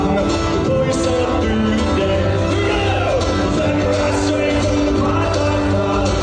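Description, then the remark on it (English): A large concert crowd, recorded on a cell phone from the third level of a concert venue, sings along loudly over steady music, with many voices blending into a dense, sustained roar and occasional shouts rising above it. “Entire crowd singing.”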